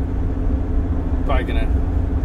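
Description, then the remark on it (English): A truck engine drones steadily in a low, continuous rumble that fills the whole stretch, winding up as the truck works its way into hills after flat country, with a brief voice-like chirp rising over it near the middle. “Probably heard the truck winding up a lot and some background noise, but yeah, we're finally getting out of the flatness.”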